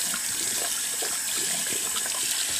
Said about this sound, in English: Right, so my hair is rinsed out efficiently. That water is hot. I use cool water. Rinse it out.